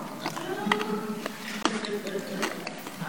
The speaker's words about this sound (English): If you hear me crunching a cough drop, I'm sorry.